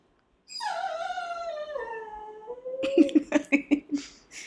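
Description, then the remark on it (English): A dog lets out one long, wavering howl that slides downward in pitch, then breaks into a quick string of short whimpering yelps. Fairly loud, with no voices. “Get a dog, they said, guys.”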